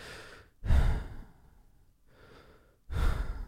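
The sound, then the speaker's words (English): A person imitates heavy mouth breathing to demonstrate a heavy breather: two loud, breathy exhalations about two seconds apart, with quieter airy breathing between them and no talking. “I would think of, is he a heavy breather or is he a light breather?”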